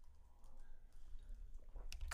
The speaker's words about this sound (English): What are you typing in?